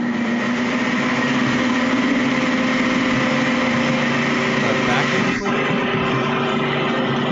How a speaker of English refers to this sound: Yeah, sorry, Christian was using the blender. Oh, I thought that was a sound effect.